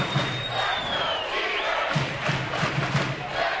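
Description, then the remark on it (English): A big stadium crowd at a football game roars and cheers during a punt, in a steady, dense wall of voices, with a few dull low thumps pulsing through the noise toward the end. “You can hear the crowd. They're into it. They're into it.”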